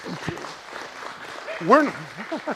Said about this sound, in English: Let's give them a round of applause for...